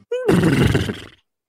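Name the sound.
horse neighing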